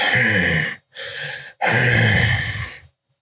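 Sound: voice imitating labored breathing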